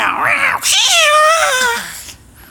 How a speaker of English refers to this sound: Oh, the cat.